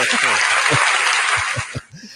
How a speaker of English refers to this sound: And the crowd goes wild. Wait, I don't think I have claps. Wait, maybe I do. Hold on. No, I've got laughing. Oh, well, that works.